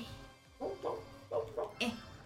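Five short, yappy barks from Chain Chomp, a video game creature sound effect, a quick pair followed by a trio, loud over a faint background hum.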